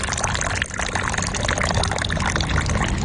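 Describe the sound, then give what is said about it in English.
Tea is poured from a purple clay teapot in a steady stream, a continuous splashing trickle that briefly dips around the middle before flowing on evenly, with no voices. “So it's just a nice cup of tea that you're making there.”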